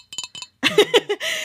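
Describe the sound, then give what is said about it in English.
A few light, ringing clinks of a Haunted Mansion mug, followed by a louder cluster of clattering ceramic knocks and handling as it is lifted for a drink of water. No one speaks. “This is my Haunted Mansion mug. I am actually drinking water today because I was so nervous.”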